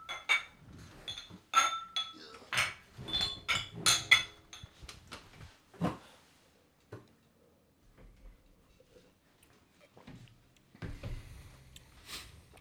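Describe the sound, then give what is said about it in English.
Several glasses of bourbon barrel-aged stout clink together in a toast at a beer tasting, a quick, bright flurry ringing sharply, then fading into quiet shuffling and a few softer knocks and rustles. “Let's get right to it, gentlemen. Let's see what the fuck we got here. Cheers.”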